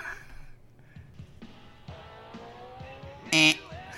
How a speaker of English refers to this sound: So I will play the theme song of a wrestler, buzz in, mm-hmm. guess it correctly, you get 3 points.